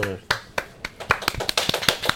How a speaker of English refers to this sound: And also, no one's ever applauded in this podcast before, so that was a nice moment.